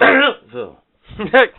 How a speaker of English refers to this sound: Sorry, I was clearing my throat there.